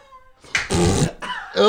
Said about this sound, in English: Got a fart noise at the end of the pod, you fucking bald bitch.